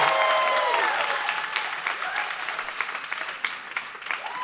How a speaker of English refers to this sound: Oh, yeah. Applause, applause, applause.